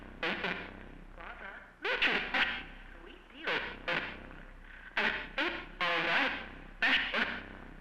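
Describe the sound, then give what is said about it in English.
A store jingle warped by static and heavy distortion, its melody breaking into choppy, garbled bursts with gaps between them, like a failing loudspeaker or radio. “The static grows louder, the once cheery jingle devolving into a deeply garbled mess.”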